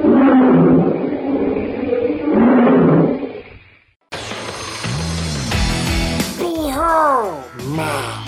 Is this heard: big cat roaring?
yes